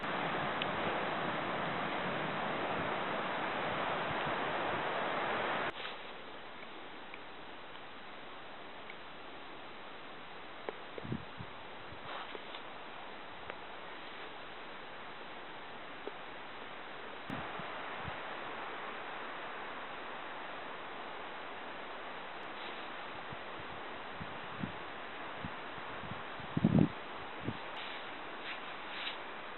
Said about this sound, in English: Oh, and this, I've got overcast and just a sprinkle of rain. Feels nice.